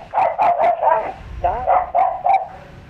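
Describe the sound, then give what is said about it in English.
A dog barks repeatedly, about seven loud, sharp barks in quick succession with a few short pauses, some edging into higher yips. No one speaks. “This dog hates barking. She barks all the time when he comes around.”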